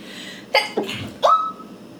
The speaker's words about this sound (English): Oh, I'm going to sneeze.